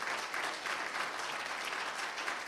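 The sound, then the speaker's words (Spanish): An audience applauds God steadily, dense overlapping claps forming a continuous bright wash of sound that holds at an even level throughout, with no voices standing out. “Dale fuerte aplauso a Él.”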